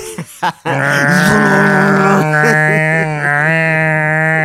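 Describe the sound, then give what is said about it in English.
A person imitates a bulldozer with a loud, sustained, gravelly droning growl after a few short breathy bursts, the rumbling engine-like tone holding steady for several seconds with slight wavering in pitch. “Just trying to make a bulldozer noise.”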